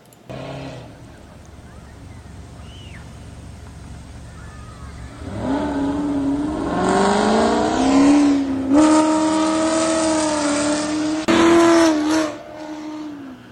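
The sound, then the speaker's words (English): A car engine revs hard as the driver slings the car around the parking lot of Northeast Park, among parked vehicles with children around, its pitch climbing and falling in repeated loud surges after a quieter start, with faint tire noise mixed in. “Slinging a car around, they can lose control.”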